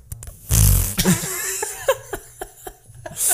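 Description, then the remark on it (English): A loud fart noise blasts out as a joke, then trails into a string of sputtering, buzzing bursts with some laughter mixed in, ending on another short blast. “No, I'm not getting into this fart joke thing with you.”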